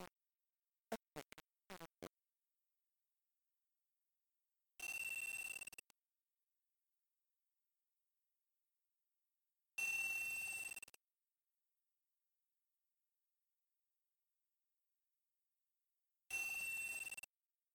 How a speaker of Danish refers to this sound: Jeg ringer tre gange. Stopper.